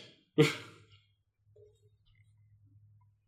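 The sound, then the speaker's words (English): In a film scene, a single sharp, crunching burst of bones breaking, loud and brief, fading within half a second into a low, quiet rumble with no voices. “Oh, you heard those bones crunch.”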